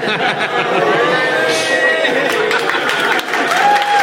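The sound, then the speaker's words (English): A live audience claps and cheers steadily for a few seconds, a dense wash of hand claps with excited voices and whoops rising through it, loud throughout. “We got an applause break.”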